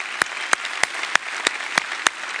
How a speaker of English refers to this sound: I want to give him a big hand out there. God bless you.